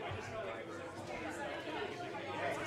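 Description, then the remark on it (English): A steady wash of crowd chatter: many overlapping voices murmuring at once, no single speaker standing out, with a constant moderate loudness throughout. “Let's open up the microphones and see what we get”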